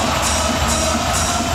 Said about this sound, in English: Crowd gives the Oilers a solid round of applause as they're able to come back and tie this game up at 4.